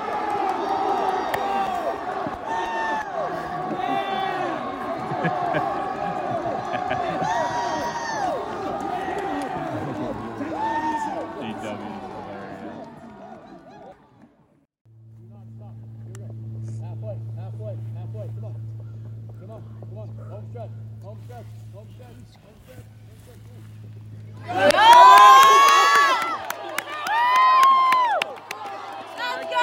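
A crowd of about 400 people murmurs and shouts, then fades to a low steady hum with faint quick footfalls of a kid sprinting around the bases, before a sudden loud burst of cheering and yelling erupts.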